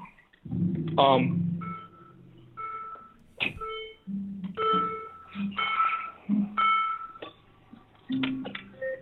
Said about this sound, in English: I'm about to start my car up real quick.